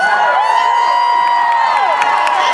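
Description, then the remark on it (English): A very large crowd gathered in one room at a comic convention cheers and whoops continuously, a dense wall of shouting voices with scattered claps and high yells rising above the roar. “That was definitely such a large crowd.”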